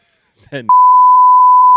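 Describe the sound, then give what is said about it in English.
A brief spoken syllable is abruptly cut off by a loud, steady censor bleep, a single pure high-pitched tone that holds unbroken for over a second until the end. “Oh, shit, I can't say beep.”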